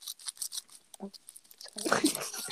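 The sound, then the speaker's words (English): Crisp, irregular crunching from someone eating, a quick series of dry bites that grows louder and denser toward the end, with a brief low vocal sound partway through. “Can you hear my crunching?”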